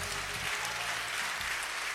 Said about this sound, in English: Oh, clap for her.